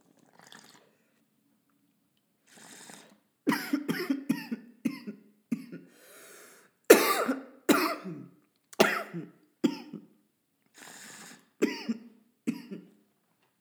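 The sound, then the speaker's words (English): A person who has smoked since 2010 coughs repeatedly in short, harsh bursts, with some throat clearing mixed in, starting softly and growing into a loud, irregular coughing fit. “Yeah, since 2010, and I still cough after all this time.”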